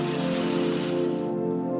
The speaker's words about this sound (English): And we're going to begin with one beautiful deep breath in through the nose and out through the mouth, breathing in.